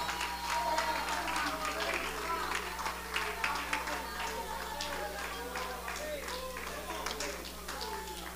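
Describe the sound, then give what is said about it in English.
A church audience claps their hands to rejoice and glorify the Lord during a sermon. The clapping is a steady, irregular patter that runs throughout, with voices calling out and murmuring underneath the applause. “Come on, if you're excited for that day, clap your hands, rejoice, glorify him for just a moment.”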